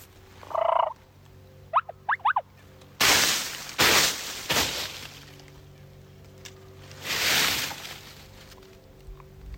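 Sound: turkey gobbling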